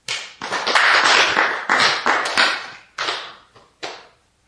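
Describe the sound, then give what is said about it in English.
A group of people in Diamond Hall clapping their hands when told to: a dense burst of claps that fades and breaks apart, ending with a few scattered single claps. No one speaks. “Clap your hands.”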